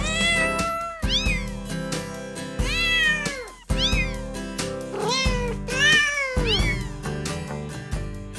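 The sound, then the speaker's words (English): A song made of cat meows, each pitched yowl rising and falling in a melodic sequence over a steady musical backing, loud and continuous with no talking. “Why am I playing a song that sounds like it's sung by some cats, kittens?”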